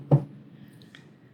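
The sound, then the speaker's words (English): A single dull knock on wood, fairly loud, followed by a quiet hum with no talking. “If the weather holds out, hope that it will, knock on wood.”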